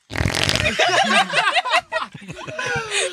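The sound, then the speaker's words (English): A loud, sputtering raspberry blown with the lips mimics a fart for a couple of seconds, followed by chuckling and giggling laughter. “Just like So I'm in class, and in eighth grade, I'd always do this fart noise, and everyone would laugh at it.”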